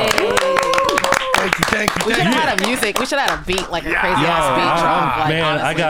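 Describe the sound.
A few people clap in quick, irregular bursts for about three seconds, close and fairly loud, with excited voices whooping over it; the clapping fades as the voices carry on.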